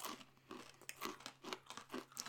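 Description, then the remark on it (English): Crunching as someone chews pork scratchings, a steady run of crisp, brittle bites about twice a second, with no talking. “Before we get into the comparison of the scratching to the beer, do you like a crispy scratching or do you like a soft one? My teeth like a soft one, but I like a crunchy one.”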